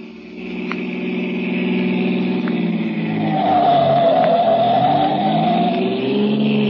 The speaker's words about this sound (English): Faster, the Colonel's in a hurry. The car's going as fast as it can, Lamont.